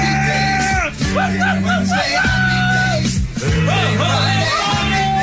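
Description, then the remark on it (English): A man yells loudly and excitedly over a blaring song, his voice rising and falling in drawn-out bursts against a steady, thumping musical backing. “Why are you yelling over the song?”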